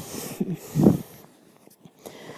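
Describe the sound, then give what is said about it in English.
A single drawn-out yawn: a breathy intake rising into a low, voiced groan that swells briefly and then trails off into quiet breathing. “A Real Yawner”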